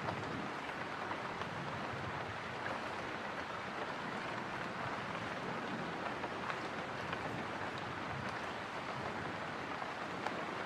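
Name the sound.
rain ambience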